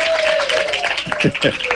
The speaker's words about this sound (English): Applause from the audience. That is correct, yes.